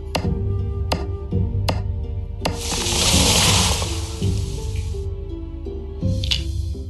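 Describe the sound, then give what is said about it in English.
Farming video game sound effects, as in Graveyard Keeper or Stardew Valley: crisp little pops of chopping down trees and collecting things land every second or so over a steady looping tune, then a longer hissing swell and a final bright pop. “It's the simple little bubble wrapping pop of, you know, chopping down trees, collecting things, picking up logs, taking them back to your stack at your house, and then going and just mining rocks with your pickaxe”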